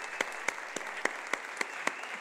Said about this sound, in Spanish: Ahí vamos a darnos un aplauso.